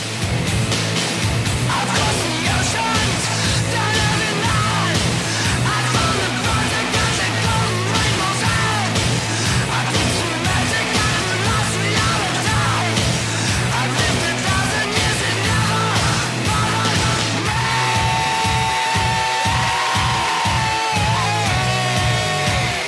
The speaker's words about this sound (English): I'm so impressed by people who can scream like that good.